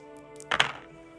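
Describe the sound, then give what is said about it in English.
Dice clatter onto a table in a quick burst of two or three hard knocks and taps, over a steady low background hum, then settle into quiet. “I was only supposed to roll two of them.”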